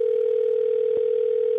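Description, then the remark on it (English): A steady, unbroken telephone line tone, heard while placing a call, hums at a single mid pitch, loud and constant throughout, with a tiny click partway through and no voices. “We're calling Christine right now to set the love trap.”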